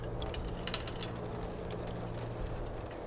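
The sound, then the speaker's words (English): Water from melting snow trickles and drips steadily down a drain in spring, a soft continuous wash with a few brief bright splashes early on, heard outdoors at low volume with no one speaking. “Birds chirping, snow melting and dripping down the drain.”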